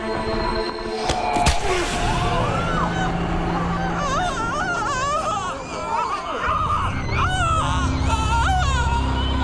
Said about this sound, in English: And we get to hear … in the bear trap. You ready for that noise now?